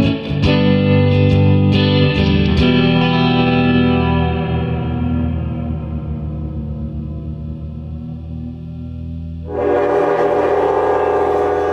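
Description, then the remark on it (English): A train's horn blares in one long, loud, sustained tone over a low rumble, with a few sharp clanks at the start and a burst of hissing rail noise near the end. “I was on the train for my first interview, having left the harbour at such an early hour.”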